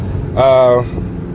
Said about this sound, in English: So you're gonna hear the heater because it is 27 degrees. And you're going to hear all the road noise and all that good stuff associated with cars. So, yeah, enjoy that.